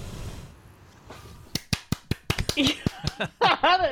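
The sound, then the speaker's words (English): One person claps alone: about a dozen sharp, crisp claps in a fairly steady rhythm, starting after a quiet stretch, with a voice laughing or talking over the last few. “No one else clapped.”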